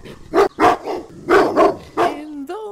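A dog barks five times in quick, uneven pairs, loud and sharp, then lets out a couple of high, drawn-out whines at the end.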